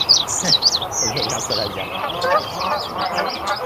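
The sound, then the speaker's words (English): A busy mix of recorded bird calls from Yellowstone, played back from an RC505 looper used as a soundboard: high chirps and whistles layered over lower honking, goose-like cries, continuous and fairly loud throughout the few seconds. “My RC505, because it has five channels, you know, like that, that you can just press one and play it, you know, and it's, I have birds, different birds from Yellowstone in here.”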